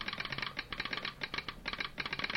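A telegraph instrument in a small shack by a railway siding clicks away in rapid, irregular bursts of sharp, bright taps, pausing briefly between groups, with no voices over it.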